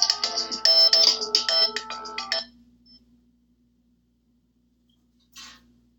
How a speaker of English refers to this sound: Okay, the other phone is ringing. Excuse me, I'll talk to you later.